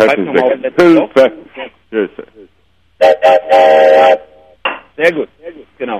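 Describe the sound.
A whistle sounds as a brief fanfare, a loud sustained tone lasting about a second, framed by people talking before and after it.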